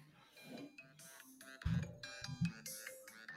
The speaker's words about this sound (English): this is his ringtone. Hold on.